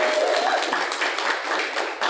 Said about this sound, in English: Give a round of applause for this.